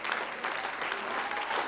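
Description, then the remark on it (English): An audience stands and claps their hands unto the Lord in a dense, steady wash of applause, many hands overlapping into a continuous crackling roar with no pause throughout. “Oh, somebody needs to stand to your feet and clap your hands right now.”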